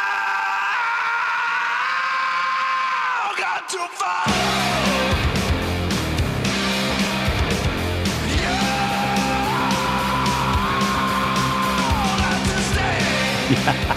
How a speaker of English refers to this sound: That was by far the most fun song to sing because it's like an escalating scream.